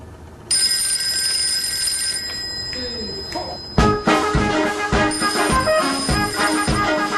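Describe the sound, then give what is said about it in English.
A steady electronic mobile phone ringtone trills for a few seconds, then a live band kept on hand bursts in loudly, playing an upbeat melody with punchy rhythmic drum hits, in a Vodacom advertisement. “Right now, whenever his telephone rings, he has a live band on hand to play.”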